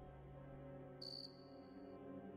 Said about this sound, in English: Only one thing in the world makes a sound exactly like that. Cricket, I say